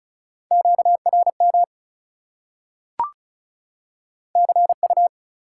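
Rapid Morse code beeps at 35 words per minute in a steady mid-pitched tone, keyed quickly in two bursts with a quiet gap and a sharp click between them. No one speaks.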